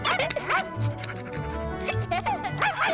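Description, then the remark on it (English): Voice actor Frank Welker, imitating the barking of Sultan, the footstool dog, gives several short, yappy barks and whines in quick bursts, fairly loud, with brief pauses between them and a low hum underneath. “And then sneaks back out with Chip and his footstool dog, who's apparently named Sultan in this.”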